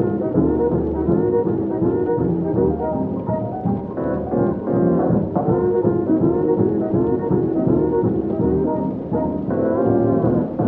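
Muffled Halloween oldies music plays from another room, a steady, continuous stream of melody and low accompaniment with its treble dulled, holding an even loudness throughout and no voices speaking over it.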